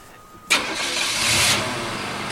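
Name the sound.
car engine starting up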